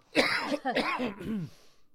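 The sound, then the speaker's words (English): A raspy cough in a few rough, throaty bursts lasting about a second and a half, with no talking around it before it trails off into quiet. “Coughing up my lungs here bit by bit.”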